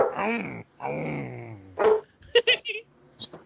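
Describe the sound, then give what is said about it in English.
A female dog makes long, whiny grumbling growls, then lets out a few short, sharp barks in quick succession, with brief pauses between them. “She sound like a fuck a car engine over”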